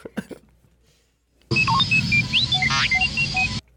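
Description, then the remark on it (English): A robotic droid chirps out a quick run of electronic beeps and warbling whistles, with rising and falling sweeps over a steady mechanical hiss, lasting about two seconds after a brief quiet start. “That is classic, That's classic D2.”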